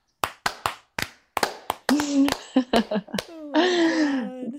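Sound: clapping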